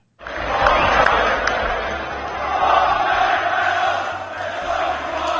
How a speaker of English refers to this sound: There's only one Ryan Reynolds. They're singing to Ryan, the whole crowd.